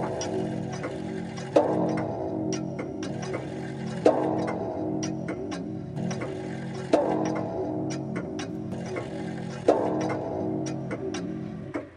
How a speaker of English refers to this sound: And anon, there strikes the ebony clock which stands in the hall of the velvet. And then, for a moment, all is still and all is silent save the voice of the clock.